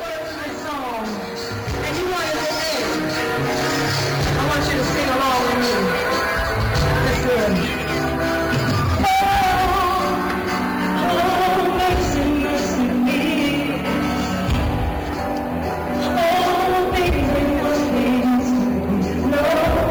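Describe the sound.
A female voice sings a gliding, sustained melody over a dense band accompaniment at a live concert, steady and loud throughout, with a faint crowd murmur underneath.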